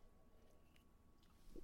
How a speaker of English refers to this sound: Let me take a sip of this.